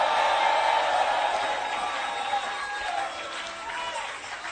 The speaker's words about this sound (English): Are you clapping? Yeah, are you clapping?